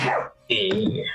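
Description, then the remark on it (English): A single sharp, breathy sneeze bursts out and fades quickly, followed after a brief pause by a voiced, slightly nasal vocal sound. “Bless you. Thank you.”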